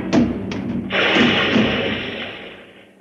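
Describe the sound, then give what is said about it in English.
A few heavy thuds in quick succession, then a loud rolling, rumbling crash that slowly fades, like someone tumbling down stairs with a beer barrel. No voices. “And once I fell downstairs with a barrel of beer.”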